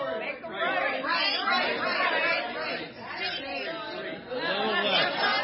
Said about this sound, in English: Everybody, start telling them where to go. Got louder. Got to be louder. Everybody start shouting.